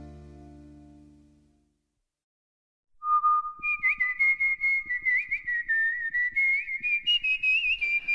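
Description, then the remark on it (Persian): A person whistles a wandering tune, starting with one long held note and then sliding through quick, warbling pitches after a brief low hum and a moment of silence. “تا حالا از ترس سوت زدید؟ از دلهوره، از نگرانی سوت زدید؟”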